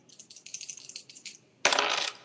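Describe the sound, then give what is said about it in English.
Dice rolled on a table for a magic roll in a game rattle with a quick run of light, bright clicks, then land in a louder, sharper clatter that trails off briefly, coming up 11. Fairly quiet, with no voices. “Okay, the dice are feeling kind today. That's an 11.”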